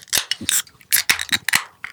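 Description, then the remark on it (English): Bottles of Tejas Negra beer from Big Bend Brewing being opened: a quick series of sharp metallic clicks and pops, each followed by a short bright fizzing hiss, repeating irregularly over a couple of seconds. “And today we're going to be drinking Tejas Negra from Big Bend Brewing. All right, let's crack them open.”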